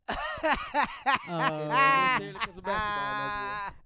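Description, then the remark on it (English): A goat bleats several times, starting with a few short, sharp cries and then stretching into two long, quavering bleats that fill the rest of the moment. “Michael Jordan is the GOAT.”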